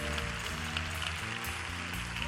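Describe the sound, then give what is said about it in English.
A crowd claps for the preacher, a steady, dense, continuous wash of applause over low sustained musical tones, with no voices standing out. “Clap your hands for the preacher.”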